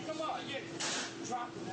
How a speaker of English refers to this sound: And there's the smack. That's loud.